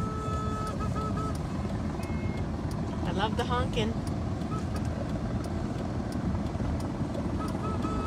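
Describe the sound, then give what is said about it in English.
A helicopter drones overhead in a steady, loud, low rumble that fills the whole stretch, with a few brief high chirps rising over it midway and faint traffic noise beneath. “You hear the helicopter.”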